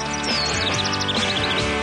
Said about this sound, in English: The birds are chirping in studio. Interesting. Interesting. I know. Funny how that is. Who says the bird noises are piped in here? Never. Only at Augusta.